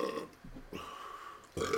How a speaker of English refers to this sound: See? That's when you know. Like, after you chug a beer and you get that burp out, you're clear.